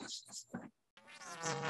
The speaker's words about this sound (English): He's back. He's still he's still, sound still like buzzing. Yeah.